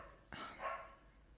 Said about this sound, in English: My mom said she can hear the dogs barking in the podcast. Yeah. Guys, we pretend that it's not happening, but I'm really sorry that you can hear that dog every week. It is so frustrating.